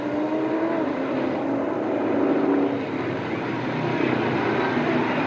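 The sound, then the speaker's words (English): Chevrolet and Ford racing trucks, lined up side by side at the start, roar steadily at high revs, a dense, loud mechanical drone with a slight swell midway, with no voices heard. “Going into the infield, Chevrolet had the initial jump, but he looks like he's having a little bit of a problem.”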